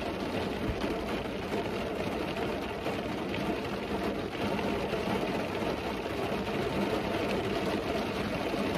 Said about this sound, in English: I wonder how loud this rain is.